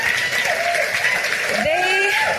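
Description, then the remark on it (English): An audience at a church service applauds its worship team steadily throughout, a dense wash of clapping from a large group, with a few voices calling and cheering over it. “If you guys would, let's give them a round of applause.”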